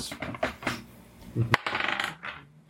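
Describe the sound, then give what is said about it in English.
A twelve-sided die clatters and rattles across a tabletop in a quick series of clicks and taps, fairly crisp, tumbling to a stop. “So it'd be 1d12 plus 1. This is my D12, I believe.”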